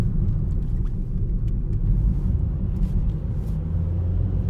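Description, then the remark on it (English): A car engine rumbles steadily while the car is being driven, a deep continuous low drone with no pauses, heard alone without any talking. “You guys hear my engine?”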